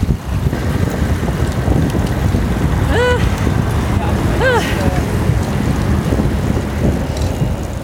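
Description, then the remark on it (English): Steady wind rushes while busy city traffic rumbles throughout during a bike ride across the Erasmus Bridge, and two short, high chirping calls ring out in quick succession near the middle. “Getting there meant retracing my route and taking another 20-minute bike ride down the Coolsingel and across the Erasmus Bridge again.”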